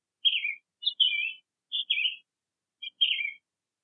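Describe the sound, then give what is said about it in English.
A bird sings four short, bright phrases of chirps and warbles, each a quick high burst separated by brief pauses, clear with no other sounds. “And up into the air she flew, sniffling along the way, caroling this Christmas day.”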